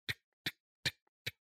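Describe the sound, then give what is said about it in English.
A wind-up clock ticks four times at a steady pace of roughly one tick every 0.4 seconds, each tick crisp, with faint tiny clicks between some beats and silence otherwise. “So I went to a thrift store and I bought a clock, like a wind-up clock.”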